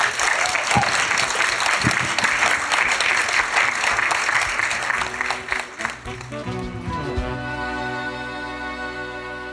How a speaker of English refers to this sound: Perfect round of applause.